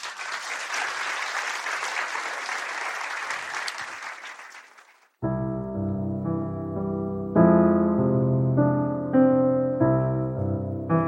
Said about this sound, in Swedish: Kanske en liten applåd.